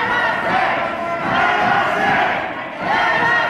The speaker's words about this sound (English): Angry protesters stood in front of the State House in Lansing and yelled, "Let us in." Some of them were part of a far-right militia. Some were carrying semi-automatic rifles.